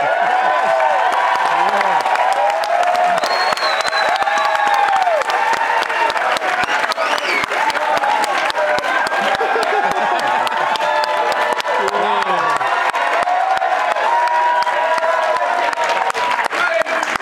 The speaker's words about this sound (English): he's got his own cheering section. He's got people with signs. He's the best part of the show suddenly.